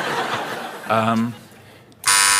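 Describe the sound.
A game show buzzer sounds twice, a short tonal buzz followed by a louder, harsher blast at the end, with faint background voices murmuring before it.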